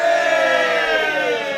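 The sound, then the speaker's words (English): A small group of people cheers loudly together in the evening, a sustained burst of whooping voices that stays strong for a second and a half before easing off slightly. “We're also joined by a massive peanut gallery this evening. Give us a cheer, y'all.”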